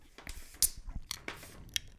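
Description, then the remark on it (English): A can of beer brewed with Cashmere and Citra hops cracks open with a sharp click and a short hiss of fizz, then a second crisp snap, amid quieter scraping and crinkling noises, with no talking. “I even splashed my eye there. You got some on your splash guard, too, on your mic. Oh, I did. That's a sign of a good crack.”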